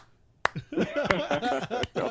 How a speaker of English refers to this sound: Golf clap.